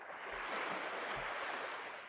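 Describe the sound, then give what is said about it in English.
Ocean water laps and washes steadily against the wooden hull of a fishing boat, a continuous hiss of surf with two soft, low thuds as small waves knock against the wood. No voices. “And all he heard was the lap, lap, lapping of the water against the wooden hull, and a ghost call of the gulls far off.”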